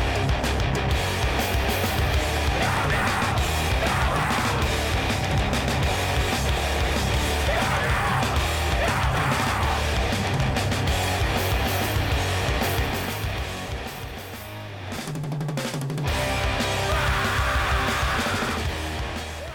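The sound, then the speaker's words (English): Loud, dense hardcore music with distorted guitars and pounding drums, a shrill screamed vocal tearing through in repeated bursts; the wall of noise briefly thins near the end before surging back. “Gotta get that last shrill scream in there.”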